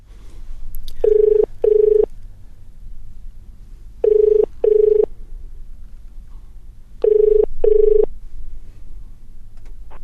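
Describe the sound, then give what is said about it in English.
A telephone ringing tone, as a call is placed to a friend, sounds in three double-pulse bursts, evenly spaced about three seconds apart, clear and steady over a low background hum, with no one talking. “Let me phone a friend.”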